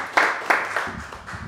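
A few scattered handclaps, sharp and fairly loud, rising over a low background murmur in a brief burst of audience applause.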